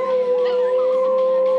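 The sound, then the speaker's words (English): A husky mother and her five puppies in a crate howl together in a steady, overlapping chorus. One long, sustained adult howl holds a pitch while higher, wavering puppy cries weave around it, fairly loud, with no talking. “We got the husky with the mom and the puppies.”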